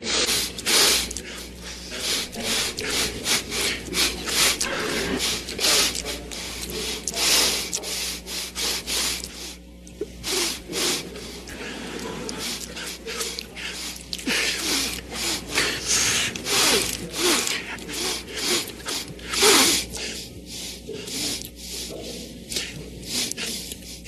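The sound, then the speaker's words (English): Loud sniffing into a microphone by a man during a debate, from a clip put together by Vice News, repeats over and over in quick, irregular bursts, one harsh intake after another, with hardly a pause and no talking. “Well, listen to this little clip put together by Vice News, and you tell me whether you think it's a bad microphone or him just fucking sniff fest 89.”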